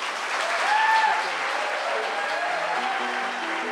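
An audience claps steadily in a dense, sustained wash of applause, with a few faint whistles and cheers rising above it, holding at an even loudness throughout.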